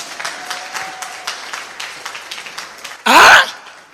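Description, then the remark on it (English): A church audience claps for the Lord at the preacher's call, in a steady, scattered patter of many hands, moderately loud, ending with a sudden, louder burst of noise that cuts off quickly. “Give the Lord a clap of free.”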